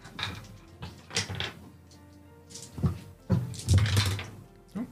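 Dice rolled onto a dice tray for a Sightseer reflexes roll in a game, tumbling and clattering in several bursts of sharp rattling knocks, the busiest flurry coming near the end, with faint murmuring underneath.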